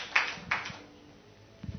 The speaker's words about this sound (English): Clap for him too.